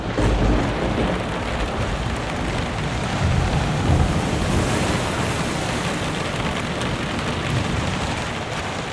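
A roaring storm at sea during the Mayflower's voyage to New England, with heavy ocean waves crashing continuously and loud wind noise blasting throughout, dense with no voices.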